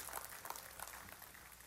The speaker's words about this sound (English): Amen. That's worth giving a sound man a hand clap. They don't get many of those.